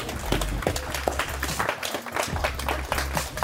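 A crowd applauds steadily for a few seconds, many hands clapping in a dense, continuous patter with occasional sharper claps standing out.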